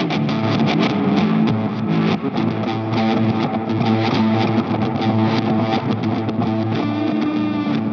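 Dense electric guitar played through a Strymon pedal, drenched in forward and backward delay, with forward echoes and reversed, swelling repeats smearing together into a thick, continuous wash of sustained notes, loud and steady throughout with no voices.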